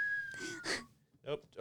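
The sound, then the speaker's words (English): A single steady whistled note drifts slowly downward in pitch for nearly a second, partly overlapped by breathy vocal sounds, followed by brief bursts of someone talking. “He thought I was whistling for him.”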